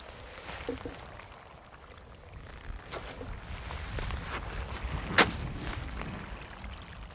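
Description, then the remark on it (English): Wet, squelching footsteps in boots sink into soggy, waterlogged, mossy bog ground by a pool, a few irregular sloshy steps over a low outdoor hiss, with one sharper splash-like squelch standing out; the walker is wet up to the calves. “It's like a huge sponge here. I can't actually get right up to the water. Oh, I'm wet up to my calves.”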